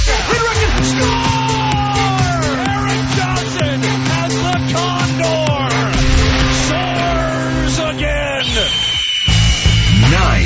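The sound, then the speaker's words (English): A loud crowd at a Colorado Avalanche National Hockey League home game roars and yells continuously, with many overlapping voices rising and falling over a steady droning tone. The tone cuts out briefly near the end before the crowd noise resumes. “The Abs buzzing right now.”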